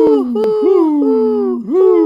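A drawn-out, wavering owl hoot that dips and rises in pitch over about two seconds, loud, with no other sounds around it.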